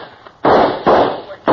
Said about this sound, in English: Well, they're shooting at us, ain't they?